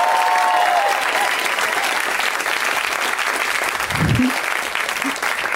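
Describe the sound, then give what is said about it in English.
An audience applauds the comics on the show steadily and loudly, a dense wash of clapping that holds at an even level for several seconds, with a brief low murmur or voice rising underneath near the end. “Give it up for everybody in the back.”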